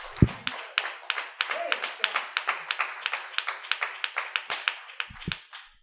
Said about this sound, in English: Clap your hands again and let's be seated.